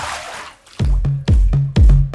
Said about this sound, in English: Now it's time for the Bird Feed Leak of the Week. Drip drop, bitch. The Bird Feed Leak of the Week.